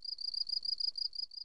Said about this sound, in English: Crickets. Do you have a crickets sound effect that you could do in post?